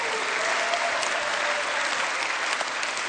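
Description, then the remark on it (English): Steady applause from an audience fills the space for a few seconds, a dense, even patter of many hands clapping at moderate loudness with no voices rising above it. “Let's just pray and go home because you may not clap.”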